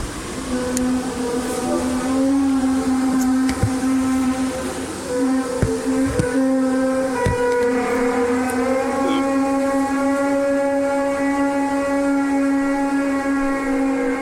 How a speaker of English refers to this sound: This is, anyways, this is the British hum.